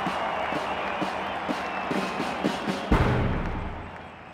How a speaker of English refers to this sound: With China in a mess after years of nationalist rule, Mao is greeted as a hero by the people. He allows himself a smile as he takes in the crowd's applause.